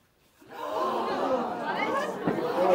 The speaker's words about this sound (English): I hear you all gasp. I can't believe this. I hear you all gasp, sound effects in post that I put.